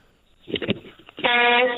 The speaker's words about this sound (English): I just wanted to return the favor and honk a horn for you. Oh, yes. Here we go. Hold on.